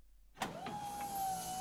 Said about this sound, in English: His chair chugged and whirred around again.